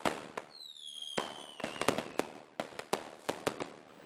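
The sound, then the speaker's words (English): A fireworks recording run through a metallic, robotic-sounding voice filter: a falling whistle near the start, then a rapid, irregular string of sharp, loud bangs and crackles. “I wonder what our fireworks clip will sound like when I drop it into my Dalek voice filter.”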